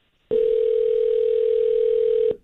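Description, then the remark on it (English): A phone ringing on an outgoing call: one steady, loud ringback tone that holds for about two seconds and then cuts off, with no voices. “It's just a phone ringing.”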